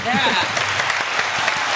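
Audience applause: a dense, steady wash of many hands clapping at a fairly loud level, with a brief vocal cheer rising over it at the start.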